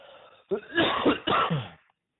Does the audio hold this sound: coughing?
yes